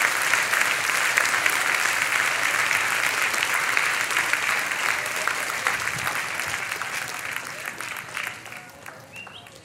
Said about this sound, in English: Let's give our kids a hand clap.